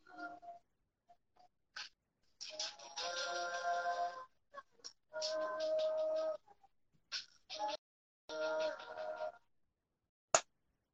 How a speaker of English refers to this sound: It might sound like it'll sound deeper if you listened to the actual song, because this song's coming out of my shitty laptop speakers.